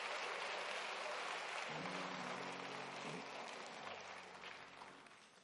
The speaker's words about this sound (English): Let's give our choir a hand clap. Come on now.